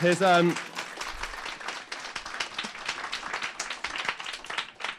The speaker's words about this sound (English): I couldn't be more thrilled to welcome Richard Holloway back into our fold. A round of applause for this amazing, amazing man.